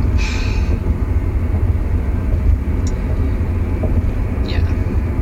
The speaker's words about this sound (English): Traffic can be really annoying, guys. I hate to break it to you.